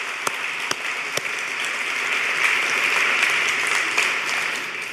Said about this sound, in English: Help me thank them with a round of applause for the amazing ministry.